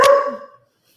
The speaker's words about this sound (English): Apparently my dog wanted to answer for me. What an introduction there. What an introduction.